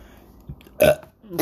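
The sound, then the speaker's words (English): A single short, loud burp with a rough throaty rasp that cuts off after a moment. No one is speaking. “I've burped on this.”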